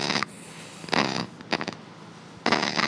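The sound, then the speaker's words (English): A giant flightless parrot, held in a woman's arms after being carried out of a room full of shrubbery, gives a deep, grumpy grumble: four rough, raspy bursts with short pauses between, low and throaty with a breathy hiss, and no one speaking. “emerges with a giant parrot carefully clutched in her arms, a parrot making a very strange, very grumpy noise”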